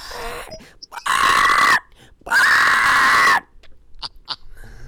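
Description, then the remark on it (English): A person vocally imitates a shark screaming as it is electrocuted, two loud, strained shrieks of about a second each with a short pause between, without words. “he, like, electrocutes Jaws at the end, right? Yeah, and the shark screams”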